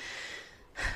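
A breathy, hissing intake of air builds for most of the second, then ends in one sudden, loud, explosive sneeze burst. No talking.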